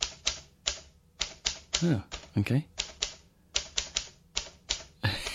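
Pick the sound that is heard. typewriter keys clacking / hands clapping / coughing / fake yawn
typewriter keys clacking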